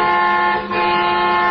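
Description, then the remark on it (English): A car horn, sounded by the driver of a moving car, blares in a loud, sustained, buzzy tone, briefly dipping before continuing steadily, with no voices over it. “What are you honking now for?”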